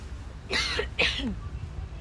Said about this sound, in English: Please excuse me coughing.